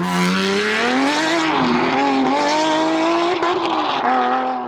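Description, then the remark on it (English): A Ferrari sports car engine roars loud, its high revving note climbing and dipping steadily for several seconds as the car races, with no voices. “Ferrari is one of the most luxurious sports cars in the world.”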